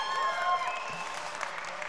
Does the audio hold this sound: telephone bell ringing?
no